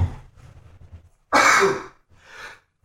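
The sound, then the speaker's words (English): A single loud sneeze bursts out after a brief wind-up of low breathy sounds, followed by a softer exhaled tail. “Bless yourself. Sneeze out.”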